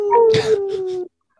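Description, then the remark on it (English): A person imitates a wolf howl, voicing one long, steady, sustained note lasting about a second that cuts off abruptly, loud with a breathy edge. “You have to howl when you do that.”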